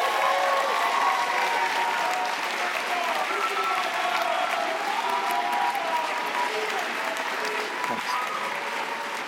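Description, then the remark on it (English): An audience claps steadily for several seconds as people leave the stage, a dense, even wash of applause with no clear individual beats, holding a fairly constant loudness throughout. “Will you applaud them as they leave the stage?”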